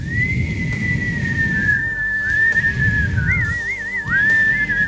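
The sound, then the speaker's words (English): A person whistles one long, continuous tune as the dragon Shenron, slowed down and reverbed, the pitch gliding and dipping, then breaking into a quick warbling trill before rising again, loud over a low rumbling background. “I'm the same but a freaking whistle!”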